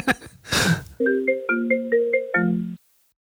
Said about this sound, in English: Oh, shit. Sorry, I had a phone call come through.